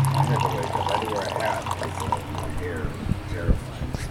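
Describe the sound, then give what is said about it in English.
Coffee is poured steadily into a cup for a few seconds, a continuous trickle with soft murmured voices in the background, with a view over San Francisco in the morning. “Let's get us a little more coffee here. You good? Get that pour going.”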